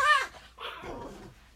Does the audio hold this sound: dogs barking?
yes